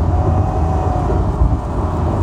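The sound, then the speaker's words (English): A car accelerating on a highway past an oil tanker at about 60 miles an hour, with a steady, loud low rumble of engine and road noise filling the whole stretch and no voices. “And now I'm going to accelerate.”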